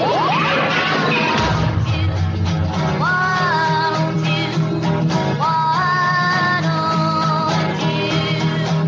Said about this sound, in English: I don't know why, dude, but that explosion sound effect always makes me laugh. And it's just an explosion. I don't know why that's funny.